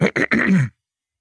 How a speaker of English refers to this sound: Sorry, I just needed to clear my throat.